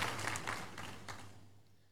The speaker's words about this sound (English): Please clap your hands some more and take your seat.